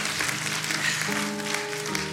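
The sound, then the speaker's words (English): A crowd claps steadily, a dense, even wash of applause that holds at the same loudness throughout, with soft sustained musical tones coming in under it about halfway. “So you can take a great big round of applause.”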